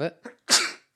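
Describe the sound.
A man lets out a single loud sneeze over his microphone, from hay fever, a sharp explosive burst that trails off, right after someone briefly speaks.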